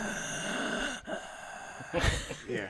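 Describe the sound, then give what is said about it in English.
Heavy breaths from a hefty man leaning into a microphone, rushing right into it, a drawn-out exhale followed by a sharper, louder breath burst, with a steady hiss underneath and no talking. “Yeah, you're a heavy breather.”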